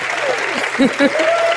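Steady audience applause at a StarTalk show, a dense crackle of many hands clapping at once, fairly loud throughout with a couple of brief low vocal bursts rising above it.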